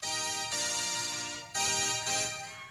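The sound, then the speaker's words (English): A mobile phone ringtone plays loud, a bright, tonal electronic melody with sustained notes that repeats in short bursts for a few seconds, with no voices over it. “No, we can hear it. Jason's phone.”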